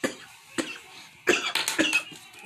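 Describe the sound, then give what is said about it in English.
A man coughs repeatedly in sharp bursts: two single coughs, then a harsher cluster of rapid hacking coughs, with no talking. “While he coughs, I will try to answer this shit.”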